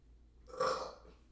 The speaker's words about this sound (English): Excuse me. Oh my God, for once it wasn't me who burped!